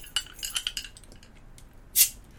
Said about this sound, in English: I do have a bottle opener, so we are in luck. Hey, jingle, jingle. Jingle, jingle keys.